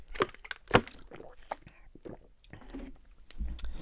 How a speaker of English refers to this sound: And one second, I'm going to take a sip of water here.